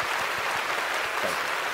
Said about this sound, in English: Thunderous applause, then. Thunderous applause for my mom.